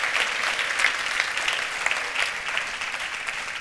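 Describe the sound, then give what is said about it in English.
A church audience claps steadily for the Lord as they take their seats, many hands producing a dense, even patter of applause that holds at a fairly constant loudness throughout, with no voices standing out. “Come on, give the Lord a clap offering as you take your seats.”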